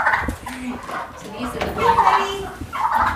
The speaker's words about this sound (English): The animals, several of them that were blind, were herded into the barn for the evening's feedings. Here come the blind ducks.